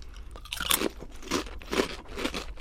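Loud, crisp crunching of pizza-flavoured ruffled potato chips being chewed, with about five bright bursts of crackling in a steady chewing rhythm and no talking.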